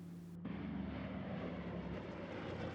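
A loud, steady jet engine hum, a broad roaring drone with a low tonal undercurrent that kicks in abruptly and holds constant throughout, with no voices.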